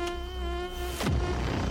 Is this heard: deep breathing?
no